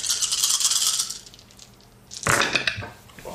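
A pool of regular dice plus three red dice, a setback die and a boost die clatters and rattles across a hard tabletop in a burst. It goes quiet briefly, then a second louder tumble of clicking dice follows.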